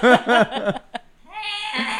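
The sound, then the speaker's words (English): A person's voice imitates a cat's scream: two wavering, bleat-like bursts, a short catch, then a long strained high-pitched yowl that holds steady to the end. “I was just thinking of the cat scream.”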